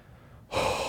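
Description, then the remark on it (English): A voice imitates heavy, nervous breathing while staring at a roller coaster: after a brief quiet moment, one loud, airy breath starts abruptly and holds steady, with no talking. “And I remember just staring at it and breathing heavy.”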